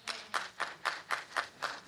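An audience claps together in a steady, quick rhythm, about four sharp, crisp claps per second, with no talking over them.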